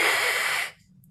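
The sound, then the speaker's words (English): A cat lets out one sharp, breathy hiss lasting over half a second, loud, then cuts off abruptly into near silence. “Hissing.”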